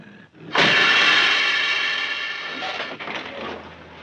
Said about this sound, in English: and then from the right side of the screen, a huge bus comes into the foreground of the shot, and it has a loud bus hiss.